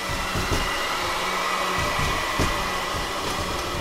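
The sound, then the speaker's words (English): A vacuum cleaner runs steadily and loudly on carpet, a continuous whirring roar with a few soft bumps and knocks as it moves. No one speaks. “We got the vacuum cleaner”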